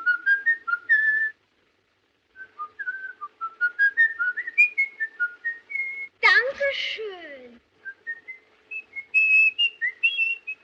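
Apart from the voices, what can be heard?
man whistling a tune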